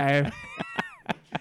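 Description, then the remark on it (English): A cat meows, followed by a few sharp, spaced knocks and rattles as it tries to open a door, moderately loud, with a drawn-out cry underneath. “Your cat just made me absolutely cat myself there trying to open your door.”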